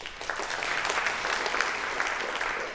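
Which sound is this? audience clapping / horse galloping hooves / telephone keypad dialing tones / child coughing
audience clapping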